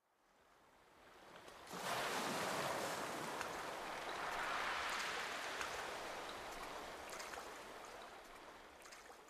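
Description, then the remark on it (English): Water from the incoming tide laps and washes around a small Greek boat in a steady rush that swells in after a brief quiet start and carries on without pause. No one speaks. “The tide's coming in. I just need to cast off.”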